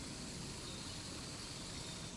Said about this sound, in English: Oh, that's a truck. I was like, what kind of bird is that? You hear it? It's very squeaky.